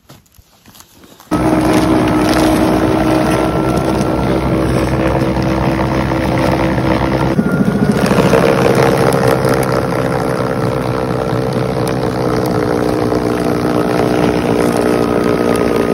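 A Toro battery-powered snowblower switches on after a brief quiet moment and runs steadily and loudly, a constant motor whine with a churning, rushing roar that surges briefly midway through.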